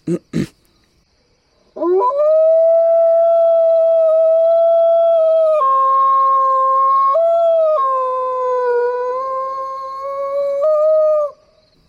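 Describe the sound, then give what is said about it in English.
A person imitates a wolf howl as part of a howling test: one long, loud, sustained howl lasting about ten seconds, swooping up at the start and wavering through a few pitch steps before cutting off, preceded by a brief sharp noise. “But the wolf howling is just the beginning of our little test.”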